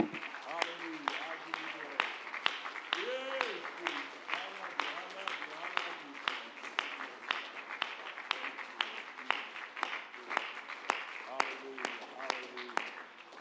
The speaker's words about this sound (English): Why don't we give the Lord a round of applause and let's shout unto God just for a moment with the voice of triumph. Would you do that in this?